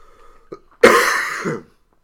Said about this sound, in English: I'm going to have to cough again, damn it.